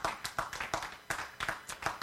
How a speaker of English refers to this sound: So give you guys a round of applause for making it through that alive.